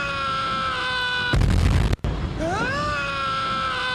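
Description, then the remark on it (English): A loud, sustained scream effect rings out, is cut by a brief rumbling burst and a momentary dropout, then returns with a sharply rising pitch and holds to the end. “I should do the mail scream.”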